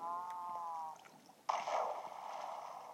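Video game water effects as water is placed, left briefly, then taken up again: a short humming, whooshy tone, a brief pause, then a sudden splashy gurgle that settles into a steady flowing rush, clear with no talking.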